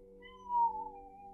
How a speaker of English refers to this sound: Did you hear the cat say the mantra? That's so good.